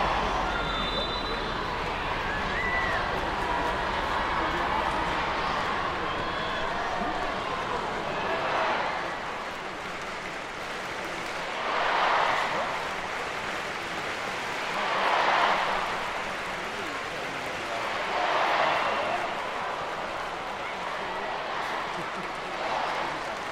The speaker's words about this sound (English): Get a bit of chanting. This is the first time we've had the crowd get into it. More of this, please.